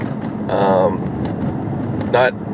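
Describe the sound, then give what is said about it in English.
Steady low rumble of road and engine noise inside a car as the speaker drives, constant throughout, with two brief bursts of a voice over it. “As you could hear, I'm actually driving.”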